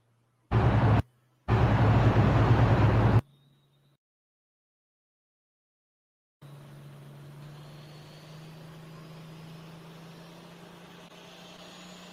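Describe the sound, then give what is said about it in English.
An International pulling tractor's engine roars loudly in two bursts, a short one then a longer one, falls silent for a few seconds, then resumes as a steady, lower rumbling drone to the end, at a tractor pull in Pawnee City, Nebraska, where this tractor won its class. “This tractor took the win in this class.”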